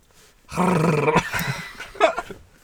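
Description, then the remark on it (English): A person voices a drawn-out, growly "rawr" roar imitation, loud, lasting about a second, followed by a few shorter vocal sounds. “Rawr. Yeah. Ooh. Roar.”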